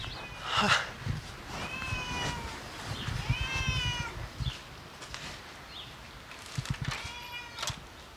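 A black cat named Midnight meows at a clubhouse, three or four drawn-out, rising-and-falling cries spaced a second or two apart, with soft bumps and rustling in the background and no talking.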